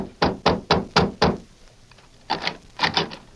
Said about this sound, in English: Convinced that Sheriff Flint's suspicion of Jeff as an outlaw and murderer was sound, the marshal, with Flint and Dutch, knocked on the door of the youth's home.